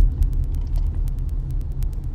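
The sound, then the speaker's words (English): A steady, loud low rumble of a car moving through road traffic, with faint rapid ticking layered on top. “And of course, this guy's cutting over four lanes of traffic to make a left turn that he realized he just had to make.”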